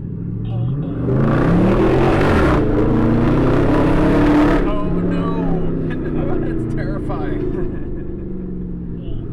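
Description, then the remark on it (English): A Dodge Charger muscle car, frostbite blue with pink trim, rumbles loudly during a ride-along, its engine surging into a roaring rev for a few seconds before dropping back to a deep, throbbing idle. “Dennis owned a Dodge Charger in frostbite blue with pink trim”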